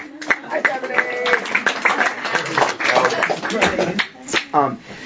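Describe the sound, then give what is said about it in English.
An audience claps steadily in a dense, loud patter of many hands for the speaker's mother as she is introduced, while voices talk and call out over the applause throughout. “Yeah, everybody clap for my mom.”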